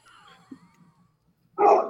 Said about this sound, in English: People do that, even the dog bark, like, woof.